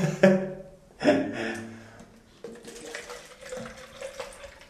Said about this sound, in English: putting this point up into my nose, bending down, and the water should, in theory, go up, run through all my sinuses and come back down out the other nostril. It's one nostril done.